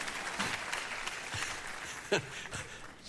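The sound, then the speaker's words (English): A crowd gives a little applause for a shirt, clapping steadily in a dense wash of overlapping handclaps, with a few sharper individual claps standing out before the applause begins to thin toward the end. “How about this? A little applause for the shirt there, yeah?”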